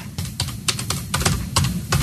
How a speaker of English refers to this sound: Very good radio when you hear that typing.